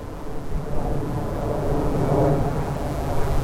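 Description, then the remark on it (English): A low-flying plane, flying sideways in strong wind, passes overhead with a deep, continuous rumbling roar that swells slightly toward the end, heavy in the low end, with no voices. “That low flying plane is flying sideways.”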